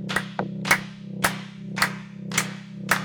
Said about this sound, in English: So we're just going to join them in some hand claps, and it's just real simple. We're just going to clap our hands. So the claps are happening right now. Let's clap.